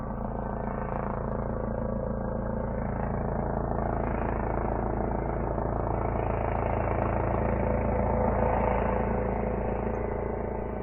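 A police helicopter flying overhead drones steadily for the whole stretch, a thick low mechanical rumble with layered humming tones and an even, unbroken loudness. No voices come through.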